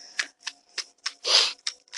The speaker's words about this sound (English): The cards. I'm waiting for them. I'm shuffling.